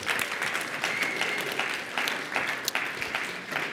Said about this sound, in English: Yeah, let's give a little round of applause for that.